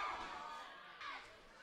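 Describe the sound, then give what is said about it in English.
Excited kids in a wrestling arena crowd yell a short two-beat chant of "fight, fight", repeated twice in quick succession, over a dense background of arena noise and chatter. “Even the kids are yelling, fight, fight.”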